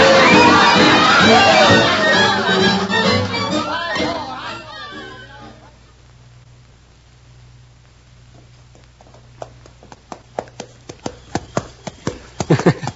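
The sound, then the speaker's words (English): Noisy crowd chatter fades away, then the hooves of a ridden horse clip-clop in a steady rhythm over a low hum, growing louder toward the end. “us riding along like this reminds me of Ma telling stories about how princes and princesses got married.”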